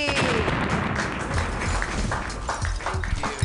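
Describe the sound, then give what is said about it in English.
An audience at a comedy show claps wildly as the next comedian is introduced, a dense, continuous roar of overlapping hand claps at steady loudness with sharp individual slaps scattered throughout, and a few whoops rising above it. “Clap wildly for Josh Kotsky.”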